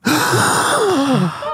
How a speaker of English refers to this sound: Audible gasp.